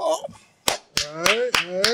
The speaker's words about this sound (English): Oh, all right. I'll applaud, man. I'm happy for you, my nigga.